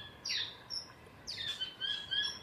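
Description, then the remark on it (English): Saddleback birds on an island call back and forth in a series of bright, chattering whistles that sweep up and down, several bursts in quick succession, with no voices. “So there are other saddlebacks responding at the moment.”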